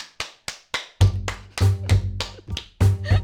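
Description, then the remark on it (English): Loud, sharp hand claps ring out one after another in a fairly steady rhythm, about a dozen in all. A low, droning bass tone joins partway through. “And I'm going to clap really, really loud.”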